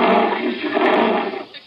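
A lion lets out a loud roar, a sustained rough growl lasting over a second before trailing off. No one speaks during it.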